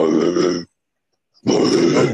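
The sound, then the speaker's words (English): A voice imitates Christian Bale's death metal growl in two loud, rough, guttural bursts, each about half a second, separated by a short silence. “Unlike Christian Bale, who just did a death metal growl.”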